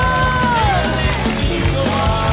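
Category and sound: crowd, audience clapping hands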